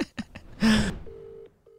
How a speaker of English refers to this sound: We interrupt this podcast for a very important phone call.